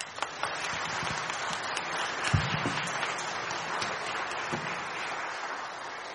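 A round of applause from an audience at a church service, a dense, steady wash of many hands clapping that holds an even level for about six seconds, with a few sharper individual claps popping out.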